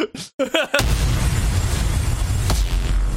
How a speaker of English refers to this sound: The way that slid in at the end with that explosion.